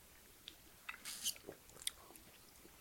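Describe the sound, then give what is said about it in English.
Quiet sipping of a frothy margarita: a few soft slurps and wet mouth clicks spread over a couple of seconds, ending as a voice abruptly begins. “Sips? Sips.”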